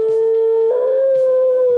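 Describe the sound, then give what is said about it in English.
A male beagle, alone and filmed by a camera while his owners are at work, plays the piano himself and howls along in one long, sustained, wavering tone, loud, while a couple of faint piano notes strike underneath. No one speaks. “And he playing the piano, and he's singing all by himself.”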